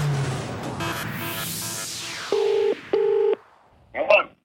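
Two steady ringback tones of a phone call being placed, each about half a second long with a short gap, fairly loud over a noisy background, followed by a brief burst of muffled sound.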